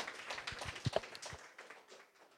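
An audience at a Toonie Talks event applauds in a steady wash of many overlapping claps, with a few sharper hand claps standing out early, then the clapping gradually thins and softens toward the end.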